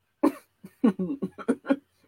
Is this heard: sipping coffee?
no